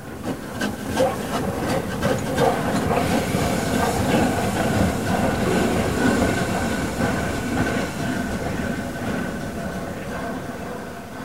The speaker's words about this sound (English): Came to the railway line and saw this big monstrous thing coming toward us. Not having ever seen a train before, it's scary as hell. Making all that noise, you know, steam shooting up and out